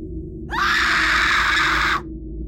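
A woman lets out one loud, piercing scream that holds steady for about a second and a half, then stops abruptly, leaving only a low background rumble.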